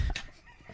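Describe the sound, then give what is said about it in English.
A brief burst of chicken and rooster sounds: a sharp, shrill squawk-like call near the start, then a softer cluck about half a second later, fairly quiet and with no talking. “You know what they say, when you live with the chickens, do as the chickens do.”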